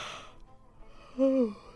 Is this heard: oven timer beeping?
no